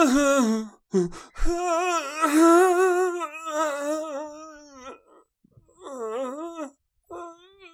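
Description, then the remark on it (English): A person hums a melodic tune in a few wavering, sustained phrases separated by short pauses, the pitch sliding up and down with slight vibrato. “Just hum it for us so that we.”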